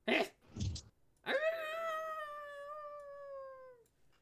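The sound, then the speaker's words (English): A couple of short breathy bursts, then a single long, wavering howl by a human voice that holds for nearly three seconds, sliding slightly downward before cutting off. Fairly loud. “You howl?”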